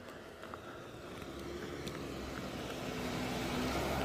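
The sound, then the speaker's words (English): A Jeep approaching along a road, its steady engine rumble and tire noise swelling gradually louder over a few seconds with a faint low hum underneath, no voices. “Uh-oh, and it looks like a Jeep might be coming this way. I'll have to get out of the road.”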